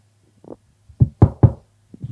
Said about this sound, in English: Oh, that's the knocking on the door. Okay. I thought that was Ugandan Knuckles.